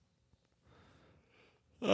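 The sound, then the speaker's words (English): A yawn: a soft, breathy intake of air builds slowly, then breaks into a loud, voiced, drawn-out exhale near the end. No one speaks. “No yawning.”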